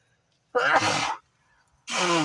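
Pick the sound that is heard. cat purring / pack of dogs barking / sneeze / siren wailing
sneeze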